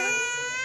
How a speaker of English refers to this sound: So he got so excited, he scared his little baby. Yeah. And then she started screaming because she's like, what's all this excitement?